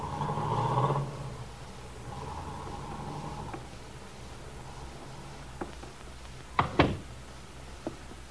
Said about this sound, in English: that's the car. Yeah. Then he's going into town.